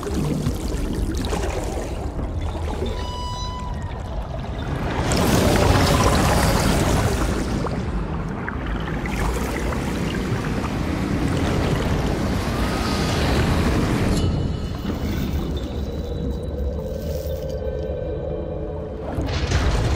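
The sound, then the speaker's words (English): Designed water sound effects from a sound library: dense, watery rushing that swells into big, low whooshes, with brighter bubbly and fizzing textures layered over a constant churning bed. No voices. “So I created this kind of little library of everything from big, low, watery whooshes to little bubbly, high-end stuff.”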